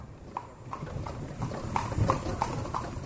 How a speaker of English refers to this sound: Instead, I opt for a more sedate tour of the city aboard a horse-drawn carriage, but I immediately receive a similar offer from the driver.